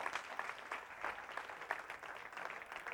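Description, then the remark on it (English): Many people clapping steadily, a dense patter of many hands with no voices, sustained at an even level from start to finish. “can we just give them a huge round of applause for the work they've done for us this year?”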